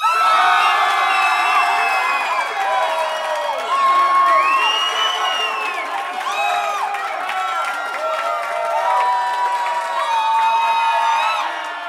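An audience cheering raucously as a song ends, with many overlapping voices whooping and shouting at high pitch. The roar stays loud and steady throughout, with no single voice standing out.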